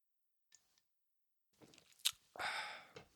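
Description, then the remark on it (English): Wet mouth noises: a faint tap, then a sharp click and a longer slurping gulp as someone sips beer and swallows. No talking. “Let's take another sip.”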